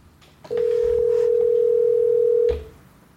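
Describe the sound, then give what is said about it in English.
A single loud ringback tone from an outgoing phone call, a steady electronic hum lasting about two seconds before cutting off, with no one speaking. “But let's call Al right now.”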